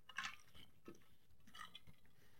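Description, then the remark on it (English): Soft sips and gulps as a person drinks water, a few wet mouth sounds and swallows spread across a couple of seconds against a quiet background, with no talking. “So let me take a drink of my water here”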